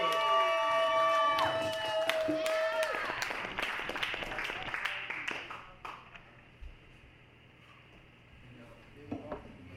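A crowd bursts into applause and cheering over a short musical sting, the dense clapping holding strong for several seconds before thinning out to a few scattered claps and murmurs.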